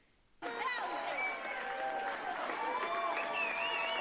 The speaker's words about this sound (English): As he said, Satanists applaud as she rips up the Bible.